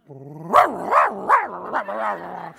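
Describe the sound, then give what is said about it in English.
A dog chasing a young girl gives four quick, loud barks in a row, then a longer drawn-out snarling yowl, with no talking over it. “I ran to the door and there's a dog chasing her.”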